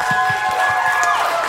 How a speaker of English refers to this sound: Yes, absolutely. Clap for you guys. You guys did it. That is amazing.